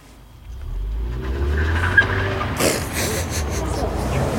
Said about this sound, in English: Here comes a car.